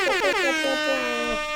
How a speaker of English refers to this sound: I'm gonna give you guys all a massive air horn.